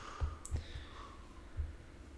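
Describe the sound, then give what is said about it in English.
Heavy dice tumble across a table, landing in a few dull thuds mixed with sharp clicks over about two seconds, fairly quiet, with no voices. “These dice are so heavy.”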